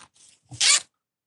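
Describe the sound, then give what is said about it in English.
A clothing zipper is pulled in two quick strokes, a short light rasp followed by a louder, longer bright zip, with silence afterward. “See, zippers, I hear them.”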